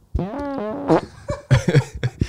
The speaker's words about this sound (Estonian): See isegi kõlant nagu päris peer.